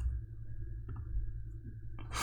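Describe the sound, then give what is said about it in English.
A couple of quick, soft computer mouse clicks as someone clicks a tab on a web page that won't respond, over a steady low electrical hum, followed near the end by a brief burst of brighter, hissy noise. “I'm clicking it. It's not letting me.”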